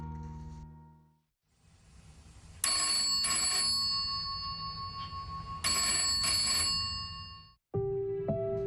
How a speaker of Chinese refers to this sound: 2天后，1986年2月21日上午9点37分，睡梦中的周锦瑜被电话吵醒，对方自称是报社的记者